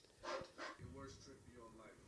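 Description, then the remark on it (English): A dog gives two quick, sharp barks, then people start talking over a low background murmur. “That's a good dog.”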